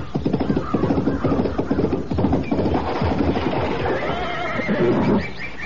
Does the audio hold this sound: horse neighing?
yes